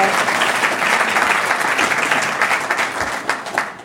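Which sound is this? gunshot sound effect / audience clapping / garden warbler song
audience clapping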